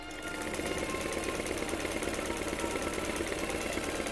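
A foot-pedal sewing machine below an open window runs steadily, sewing its first stitches, its needle chattering in a fast, even rhythm over a constant mechanical hum, with no voices present.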